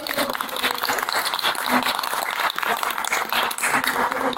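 An audience applauds steadily, a dense wash of many hands clapping at an even loudness throughout, with no single claps standing out and faint voices mixed into the noise.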